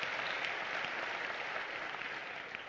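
An audience applauds the male chorus, dense steady hand clapping from many people filling the space at an even, fairly loud level throughout, with no talking over it.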